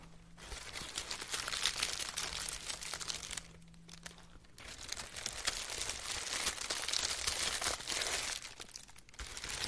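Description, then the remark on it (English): Steady crinkling and rustling of tissue paper wrapped around a fragile item being handled and folded, with a brief quieter pause midway before the crackly rustling resumes. No one speaks. “So I keep it wrapped in a tissue paper.”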